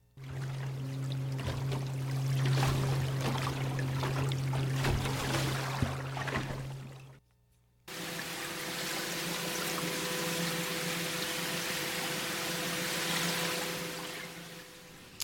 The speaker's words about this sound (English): But for now, let's listen to pile driving. That's one form.